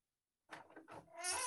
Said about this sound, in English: But yeah, sorry, just let my cat out.